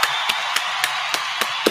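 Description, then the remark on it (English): Steady, evenly spaced hand claps given as a round of applause for show sponsor 583 Expressions, about seven sharp smacks in under two seconds, sounding like one person clapping along over a constant hissy background, with no voices. “First and foremost, let me go ahead and continue the round of applause so we can give a shout out to 583 Expressions.”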